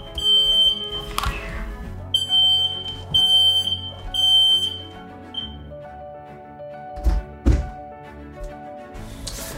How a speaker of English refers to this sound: This podcast is absolute fire. It just set off the fire alarm in my house during this recording because the house and the world are all on fire